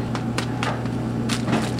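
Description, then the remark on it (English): Dry wheat gluten for seitan is poured from a box into a bowl, giving a series of soft, hissy rustling bursts over a steady low hum, with no one speaking. “It comes in this box, and I'm throwing the wheat gluten into a bowl.”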